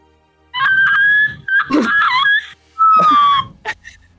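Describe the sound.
A person imitates the warning howl of Pup, a dog, in three long, wavering, whistly tones with brief gaps, loud, ending with a short breathy burst.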